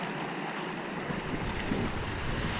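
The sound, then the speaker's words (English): A steady, loud rush of churning water and wind buffeting the microphone, with low-end roar building after the first second, as a small boat drops into Granite rapid, going down the first tongue and riding the whitewater waves. “Okay, we'll go down the first tongue, and we just try to ride the things, the waves.”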